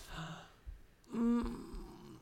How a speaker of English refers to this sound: You literally gasped.